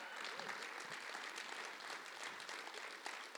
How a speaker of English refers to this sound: Let's clap. That's awesome.